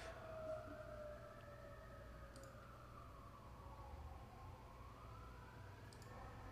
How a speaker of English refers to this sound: Hold on, I'm gonna wait for the siren to stop.